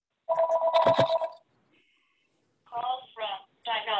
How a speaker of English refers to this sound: Shut up, phone.